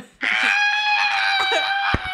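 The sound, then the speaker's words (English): A loud, sustained human scream rings out for about two seconds, high-pitched and strained with a steady tone, cutting off abruptly near the end; no talking accompanies it. “The sound of that scream.”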